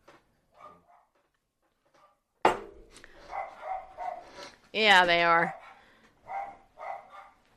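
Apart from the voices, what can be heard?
dogs barking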